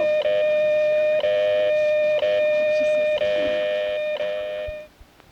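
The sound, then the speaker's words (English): A radio time signal marking 16 hours: a steady, loud mid-pitched electronic tone broken by brief gaps about once a second, running nearly five seconds before cutting off, with faint static beneath. “At the tone, 16 hours.”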